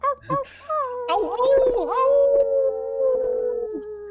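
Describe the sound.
A person imitates a wolf howl, starting with a couple of short yips before a long, wavering, sustained howl that slowly fades, with a second voice briefly joining in the middle.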